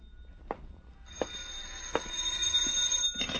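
A telephone rings with a steady, shrill electronic tone that holds for about two seconds, with a few sharp clicks and taps before and during it. No one speaks.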